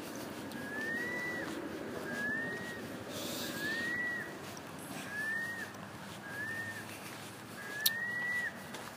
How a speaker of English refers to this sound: It sounds like a seagull. I'm not quite sure what's... Yeah, it is, yeah. Oh, I don't know, maybe it's like a baby seagull or something? A mother seagull and her baby?